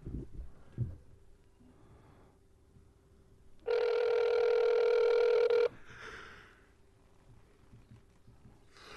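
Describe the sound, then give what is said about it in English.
A single loud ringback tone of about two seconds from an outgoing phone call, a steady buzzy electronic ring rising out of a quiet, faintly humming background. “Come on, pick up, stupid.”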